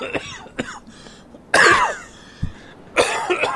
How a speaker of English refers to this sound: Oh, hold on. Sorry. That's real. That was perfect. Perfectly timed cough. Pollen.